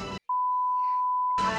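A single sustained electronic beep from a praise beep button, a steady pure tone holding for about a second, clear and fairly loud, with bits of talking just before and after it.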